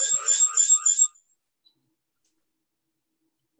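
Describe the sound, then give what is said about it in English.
A short burst of bright, high-pitched electronic chirping from an iPhone joining a Zoom meeting lasts about a second and stops abruptly, followed by near silence. “She about to go to work, so she had to put her phone on to join the Zoom meeting.”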